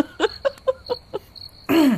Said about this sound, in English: So I had to clear my throat for that one.